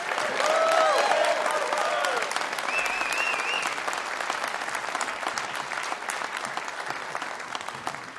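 Sustained applause from an audience, a dense steady clatter of clapping lasting the whole stretch, with a few whoops and whistles rising above it early on before settling into even clapping.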